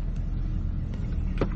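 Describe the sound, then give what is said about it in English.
A moving car's steady engine rumble and road noise drone continuously, heavy in the low end, with a brief higher whoosh near the end and no talking, from a video of a woman twerking on top of the moving car. “She's really jumped on the top of a moving car to twerk.”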